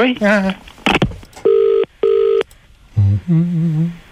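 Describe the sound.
A telephone ringing tone sounds before the call is answered: one clear double burst, two short steady beeps in quick succession, between brief bits of speech before and after.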